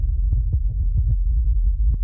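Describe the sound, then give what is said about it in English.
A person's heart pounds as they sit in a plane seat: a deep, muffled heartbeat beats steadily with no voices, its low, heavy thumps repeating under a constant rumbling hum. “Sitting in my plane seat, heart pounding, I put on my headphones.”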